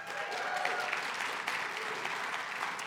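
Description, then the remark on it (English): Sustained applause from a large audience at Bridgewater church for a new pastor, a dense, steady wash of many hands clapping at once with no clear pauses, fairly loud and continuous throughout. “If you're new here, just so you know why everybody's clapping, well, that's what they always do for me, so thank you.”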